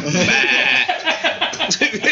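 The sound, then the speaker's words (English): A baby goat bleats in a loud, high, wavering cry, followed by shorter choppy vocal sounds that may be more bleating or overlapping voices. “Goat. Baby goat. Baby goat.”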